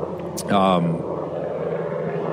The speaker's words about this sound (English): Helicopter. Yeah, I'm watching what they're doing. They're probably just going to check out the scenery. It's a beautiful flight.